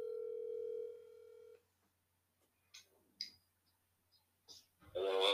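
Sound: telephone call being dialed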